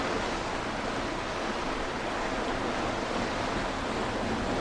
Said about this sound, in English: How much change and noise there is at the surface of the sea. Every moment, all this collision, beginning and ending of every wave.